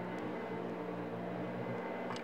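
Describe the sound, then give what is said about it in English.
A vacuum cleaner runs 3 metres away with a steady, unbroken motor drone and a whooshing hiss, holding an even loudness throughout with no speech or other sounds. “A vacuum cleaner 3 metres away.”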